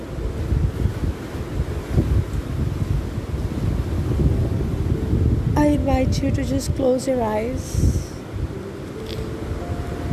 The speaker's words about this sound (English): listen into the waves coming your way and healing you. Feel the breeze on your face.